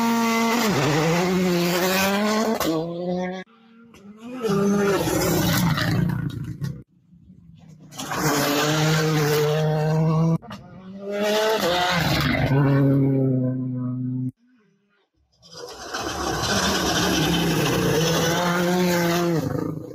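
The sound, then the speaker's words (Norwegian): A rally car that Jaru Hutten and Otang Tanak have driven roars in four loud bursts, revving up and down with brief silent gaps between, rough and aggressive with a hint of tires scrabbling; no one speaks. “og det har Jaru Hutten gjort, og Otang Tanak på vei nå til Monza, så har de fått kjørt litt med den bilen.”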